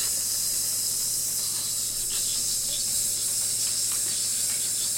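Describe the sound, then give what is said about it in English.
A steady, loud sizzling hiss fills the whole stretch, bright and airy like something frying, with faint crackles flickering through it and no voices. “Sizzling hot takes!”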